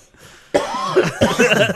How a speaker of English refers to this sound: That makes me cough. Sorry about your vocal cords.